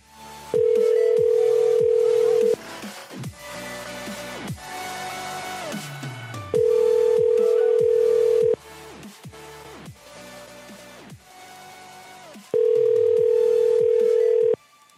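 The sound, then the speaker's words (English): A phone ringback tone sounds three times as a pastor is called again after the line dropped, each ring a steady two-second electronic buzz spaced evenly apart, with busy muffled background noise filling the gaps between rings. “I'm gonna call him again.”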